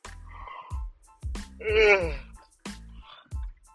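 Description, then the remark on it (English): A person yawns, a long drawn-out voiced groan that swells and fades, with short breathy vocal bursts and low thumps before and after. “Excuse me, I'm yawning a lot.”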